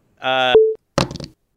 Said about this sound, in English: I heard a beep, and then I heard the phone hit the ground on the other end of our conversation.